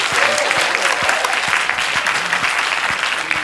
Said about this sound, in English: That means, yeah, a round of applause.